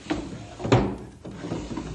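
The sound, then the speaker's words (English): A wooden desk drawer slides open with a scraping rumble and a couple of knocks and thumps, loud, with no voices over it, as someone searches the desk drawers for a small gold medallion. “It's around here someplace. I think in one of these desk drawers.”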